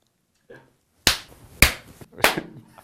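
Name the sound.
hands clapping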